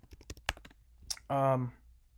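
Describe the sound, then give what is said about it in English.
A quick burst of crisp computer keyboard typing, with several rapid key clicks as someone types a search for the Uncut Gems cast, followed by a brief murmured voice and then a few faint taps. “I'm typing right now.”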